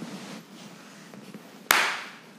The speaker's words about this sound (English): Do you want to clap for us? Nice work.